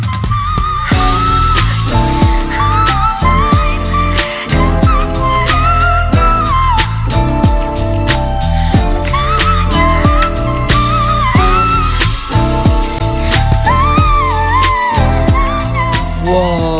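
A pop song plays loudly and continuously, with a female voice singing in a very high, thin whistle register, gliding notes over steady backing instruments and no talking.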